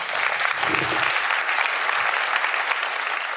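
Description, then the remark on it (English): Steady, loud audience applause for speaker Nick Marchesi of Orange Sky on the Urban Future stage in Helsingborg, Sweden, in 2022, a dense wash of many hands clapping that holds at an even level throughout, with no voices standing out. “So without further ado, please give it up for the very impressive Nick Marchesi.”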